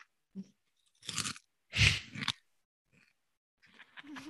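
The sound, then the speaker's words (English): Loud, dry crunching from a few bites into a crisp snack with black spots on it that smells like a barbecue chip, three broad noisy bursts with short pauses between, then softer chewing trailing off at the end. No one speaks. “It does just smell like a barbecue chip.”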